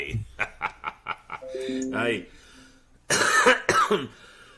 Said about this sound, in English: Pardon the cough. I hope I don't do it too many times more for this show.